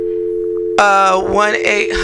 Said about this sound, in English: Oh, it's beeping like weird.